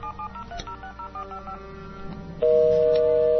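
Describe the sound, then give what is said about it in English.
Quick telephone keypad beeps give way to a loud, steady, unbroken tone on the line as a caller's phone is called back, an odd continuous ringing sound from a faulty line with no normal on-off rhythm and no voices. “His ringing. That's not a ringing. A normal ringing.”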